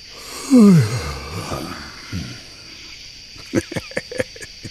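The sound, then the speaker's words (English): A person gives a loud, drawn-out yawn whose voiced pitch slides downward before trailing off into a breathy exhale, followed a few seconds later by a quick series of soft clicking mouth noises. “Check out how do you feel when you just hear me yawn?”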